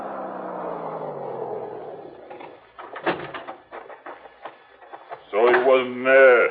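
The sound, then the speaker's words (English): A wooden shack door creaks slowly open with a long, falling groan, then rattles and thumps shut with a few knocks, followed by a person speaking. “Quickly, I ducked back into the shack, waiting behind the door.”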